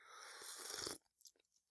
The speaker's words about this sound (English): I'm just gonna say, take a sip of my coffee.